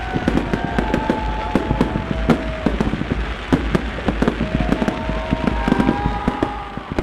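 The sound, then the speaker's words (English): A steady barrage of fireworks over Lake Mendota during a Winter Carnival: sharp booms and rapid crackling pops fire off in quick, irregular succession, with thin whistling tones sliding downward between bursts. “Not 5 minutes after those words were spoken, fireworks illuminated Lake Mendota in red, blue, yellow, and green.”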